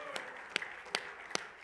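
An audience claps hands in unison to praise the Lord, four sharp, evenly spaced claps at a steady beat over a faint, continuous background tone.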